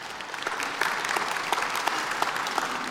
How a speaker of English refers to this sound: And you really should applaud yourselves. I mean, it's a beautiful thing.